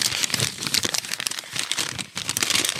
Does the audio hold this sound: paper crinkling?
yes